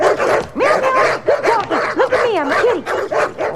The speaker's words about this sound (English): There's some mean old dog.